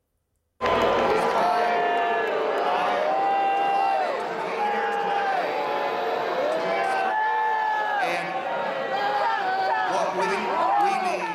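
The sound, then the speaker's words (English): A large conference audience at the Turning Point Action Conference boos a speaker loudly and without pause, many overlapping drawn-out voices swelling and dipping together for about eleven seconds, with no single speaker rising above the crowd. “This is of you being booed at the Turning Point Action Conference yesterday.”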